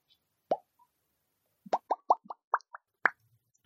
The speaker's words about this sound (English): The word pop was first used in 1812 and referred to the sound of a carbonated beverage bottle being opened.